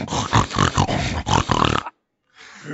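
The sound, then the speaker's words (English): A man imitates a pig, making a rapid run of rough, nasal snorts and grunts for almost two seconds, then falls silent before one softer, breathy snort. “Nothing says Black Friday like a couple of fat baby men snorting around like pigs.”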